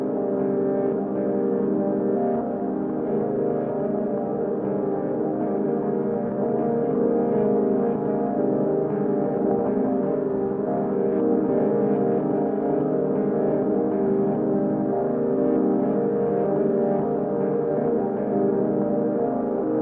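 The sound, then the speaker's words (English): An electric guitar looped in a Mimeophon drones on in a dense, sustained wash, its signal multed into a VCF3DB filter that darkens it and then into a Moisturizer spring reverb that smears its tones, holding a steady level with no talking throughout. “I'm going to mult my guitar signal into the VCF3DB and then into the moisturizer for a little bit of spring reverb.”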